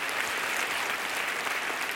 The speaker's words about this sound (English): Come on, give God a good hand clap offering.